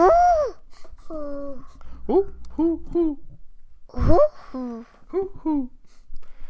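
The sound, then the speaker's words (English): A man's voice imitates an owl, giving a string of short, wavering hoots with rising and falling pitch, about eight in all, with one louder, rougher call midway. “I think my wife's gonna like want that piece of audio just isolated so she can listen to it all the time of this dude doing all of his animal noises.”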